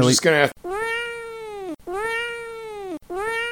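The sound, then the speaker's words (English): A short burst of voice, then three long, drawn-out meows in steady succession, loud, a person imitating a cat with even, sustained cries separated by brief gaps, used to bleep out the English title of the first Almodóvar movie. “Yeah, I'm just going to bleep out the title. Meow, here, meow, meow, meow, meow.”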